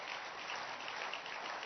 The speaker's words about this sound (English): Clap your hands for yourself again.